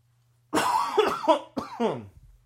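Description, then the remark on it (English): A person coughs twice in quick succession, fairly loud, each cough harsh with a raspy, voiced edge. Nobody speaks. “Usually, I cough right here and my dad covers for me, but this is what happens when you just...”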